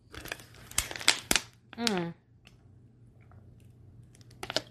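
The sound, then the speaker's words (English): Sharp, irregular crackles of a plastic water bottle being squeezed, followed by a brief tonal gulp as someone drinks, a quiet pause, then a few more crinkles at the end. “Oh my gosh, I need to get a drink of water, you guys.”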